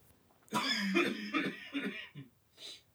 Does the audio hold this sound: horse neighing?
no